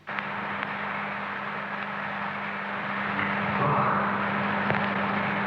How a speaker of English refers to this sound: The humming in the background is the fans of electric heaters warming the building.